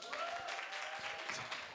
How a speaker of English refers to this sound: So this girl, you can clap, sorry.